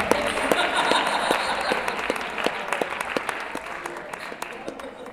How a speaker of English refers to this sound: One more round of applause for everyone. Not one more.